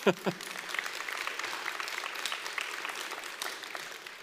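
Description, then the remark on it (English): A church audience breaks into a round of applause for the church's new logo design, many hands clapping in a dense, steady patter that holds at an even, moderate level throughout, with a brief voice sound at the very start. “Great round of applause.”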